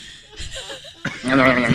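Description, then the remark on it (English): A goat makes a few soft crunchy, chewing-like noises as it eats a Dorito chip, then lets out a loud, wavering bleat that fills the last second. “Now that we have your attention, here is the sound of a goat eating a Dorito.”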